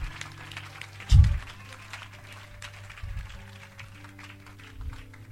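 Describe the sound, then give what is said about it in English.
A crowd claps steadily throughout, a dense patter of many hands over a low sustained hum, with a few heavier low thumps breaking in. No one speaks. “Please clap your hands.”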